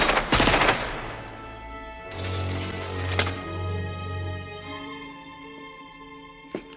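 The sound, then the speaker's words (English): A rapid burst of automatic gunfire from henchmen shooting out the glass in a film scene with Alan Rickman and John McClane opens, followed by a second loud volley and bright, crashing shatters of glass, with tinkling debris trailing off and one last sharp crack near the end. “"Shoot the glass." And they all shoot the glass.”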